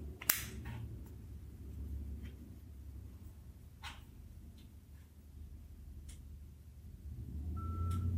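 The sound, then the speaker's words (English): A single steady electronic beep sounds near the end, clear over a low background hum, preceded by a sharp click and a few faint ticks as a Victor Reader device powers on. “I heard a beep.”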